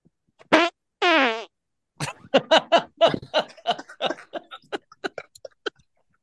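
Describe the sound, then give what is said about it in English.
Two loud, buzzy fart noises in quick succession, followed by a long rapid string of sputtering fart blasts that gradually trail off, clear with no talking. “Please fart.”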